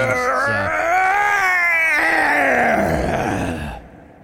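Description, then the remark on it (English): A long, strained creature yell from Zardarok's Sunblight, echoing through a cavern, rising and bending in pitch with rough, groaning harmonics, loud, lasting a few seconds before trailing off into a fading rumble. “You hear this yell echo through the cavern.”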